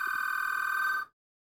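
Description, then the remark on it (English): A landline telephone at home rings once in a single steady electronic burst lasting about a second, loud, then cuts off into silence. No one speaks. “I'm back at home. And you can tell because the phone is ringing.”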